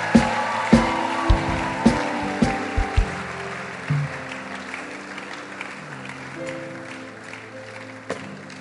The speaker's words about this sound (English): Come on, church. I thought we'll keep clapping.